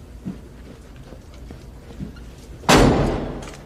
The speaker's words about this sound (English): What do you think? I got to give it a 6. That door slam was kind of weak.